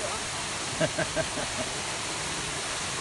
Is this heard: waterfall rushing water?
yes